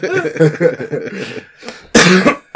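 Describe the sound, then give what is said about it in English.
A series of throaty, voiced coughing bursts, followed by a brief pause and then one sharper, louder cough, as a person coughs into their arm. “I coughed into my arm.”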